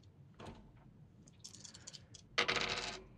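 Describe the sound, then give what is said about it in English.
Dice rattle and clatter across a hard tabletop, a few light clicks building into a louder burst of tumbling that settles within a second, clear with no talking. “Roll prowl to see how good you get down there and get this into her wings.”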